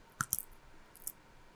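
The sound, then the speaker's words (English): Scissors snip quietly: two quick crisp cuts in succession, then a third after a short pause, with no one talking. “Scissors.”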